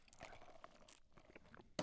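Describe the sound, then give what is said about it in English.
Someone slurps a sip of an oat milk latte, with short, wet, crackly bursts of air and liquid at a low volume, ending in a sharper gulp-like burst. No one speaks. “I'm not really sorry, but that was just an awkward 5-second pause, and you probably heard me slurping this delicious oat milk latte.”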